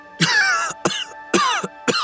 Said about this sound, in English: a man crushed beneath a mast, broken and coughing blood.